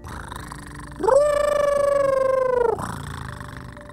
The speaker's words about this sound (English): and the wolf cat gave a happy sound.